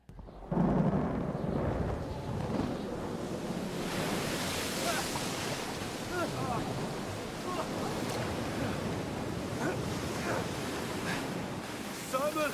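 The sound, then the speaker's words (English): Stormy sea waves crash continuously under a strong, roaring wind that buffets the microphone, with faint, indistinct shouting voices caught in the steady, loud din. “We're going to get into season 3, episode 8 of The Chosen, where it does a very good job depicting what was going on with the disciples as Jesus was far away and they were caught in a storm.”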